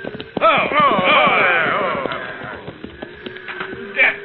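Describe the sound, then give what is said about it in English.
Horse hooves clip-clop in a steady, uneven rhythm, with a warbling, voice-like sound rising over them early on and faint murmuring in the background. “Get down off that horse, Sawyer.”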